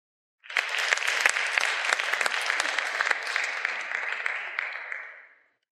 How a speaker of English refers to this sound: I think about, please give everyone a round of applause there, folks.